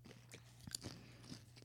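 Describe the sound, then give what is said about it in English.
Crunching of someone chewing crisp chips, a handful of sharp crackly bites spread irregularly over a couple of seconds, with a low steady hum underneath and no talking. “They're like soft, you know? They crunch very, very easily.”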